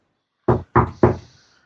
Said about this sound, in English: Oh, dear. Someone's at the door.